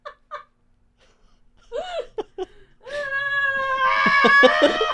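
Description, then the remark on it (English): A person imitates a cow with a long, drawn-out moo, loud, after a few short vocal yelps, with giggly bursts breaking into the end of the moo. “They're cow cats. Yeah. Yeah. Moo. You. Moo.”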